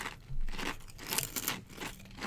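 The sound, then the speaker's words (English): Crisp crunching of someone biting and chewing lentil potato chips, several brittle cracks in quick succession with bright crackly texture, no talking. “Crunchy.”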